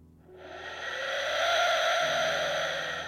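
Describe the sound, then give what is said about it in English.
An Aztec death whistle, an ancient Aztec instrument, blown in one long, harsh, shrieking blast lasting about three seconds, swelling quickly in loudness and holding steady before easing slightly, with no voices. “So here is the Aztec Death Whistle”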